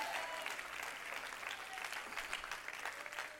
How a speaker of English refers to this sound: Everybody clap your hand and shout yes.